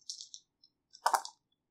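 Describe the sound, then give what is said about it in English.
Dice rattle and clatter across a hard surface during a game roll: a quick burst of small clicks, a brief pause, then a louder, denser tumble that settles quickly. Fairly quiet, with no voices. The highest die shows a 5. “let's roll the dice and see what happens.”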